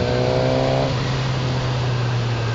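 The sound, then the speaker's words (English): A 1000cc motorcycle engine drones loudly and steadily, with a tonal whine at first that blends into a continuous roar mixed with wind rush. No one speaks. “I love the 1000 engine. This is a yes from me. It wants to go forward right now, even though I'm on the flat.”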